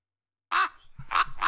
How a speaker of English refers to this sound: Oh, I hear some ravens. That means it's time for ravens calls.